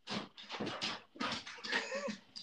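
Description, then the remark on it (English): A dog named Pluto barks five or six times in quick succession, fairly loud, with a brief whining note near the end and no talking. “He's barking for Penn State.”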